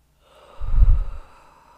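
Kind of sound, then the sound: human body sound, a big yawn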